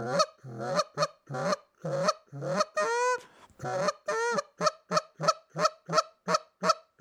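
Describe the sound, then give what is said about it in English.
A goose call blown in quick, repeated honks and clucks, muffled by a middle finger pushed inside the call's exhaust, some notes softer, with a couple of longer rising honks mid-sequence; loud, no talking. “And that's all that is just putting that middle finger right inside of that exhaust on your goose call.”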